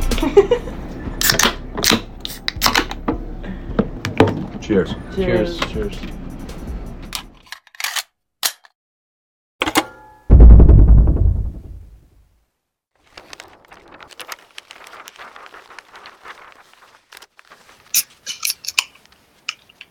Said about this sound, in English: Cheers. All right, and that long pour means we are live, waiting for confirmation that we are up and running on TikTok, YouTube, Facebook, Instagram.